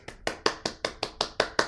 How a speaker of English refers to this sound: Round of applause.